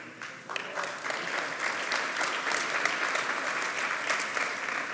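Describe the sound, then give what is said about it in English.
A group gives light, polite golf-clap applause, a steady patter of many hands that holds at an even, moderate level for several seconds with no voices over it. “If I was in our third son's church, he would call that a golf clap.”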